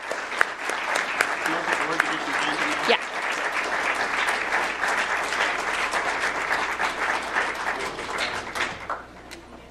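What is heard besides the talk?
audience applause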